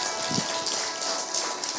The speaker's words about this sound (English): But in the meantime, let's give them a big round of applause for joining in today.